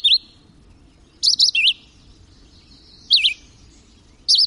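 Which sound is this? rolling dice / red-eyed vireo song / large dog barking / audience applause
red-eyed vireo song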